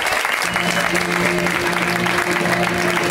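A comedy club audience applauds steadily, a dense wash of clapping hands that stays loud and even for a few seconds, with faint murmuring and a low tone humming underneath.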